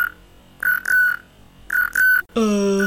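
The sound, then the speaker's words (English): Two pairs of short, high electronic beeps repeat with a pause between them, followed by a longer, richer tone that holds steady to the end. “What's that sound? What sounds? That beeping sound.”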